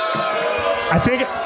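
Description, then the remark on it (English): A live audience reacts loudly, with a dense wash of crowd noise, applause and drawn-out boos rising over it, steady throughout and swelling near the end, after a remark that the speaker doesn't like a rock band. “I hear more applause than booze.”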